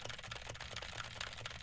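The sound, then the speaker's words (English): Rapid, steady clicking of a mechanical keyboard with Gateron Blue switches, many crisp keystrokes in quick succession, fairly loud, with no voice. “Now I am typing on a keyboard with Gateron Blue switches to see how much of my voice versus how much of the keyboard it picks up.”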